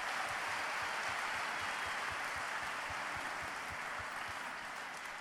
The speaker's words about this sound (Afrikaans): Ek kan sien julle het baie moeite gedoen. Dankie dat ons lekker kon saam sing. Kom ons gee vir hulle ook 'n lekker hande klap.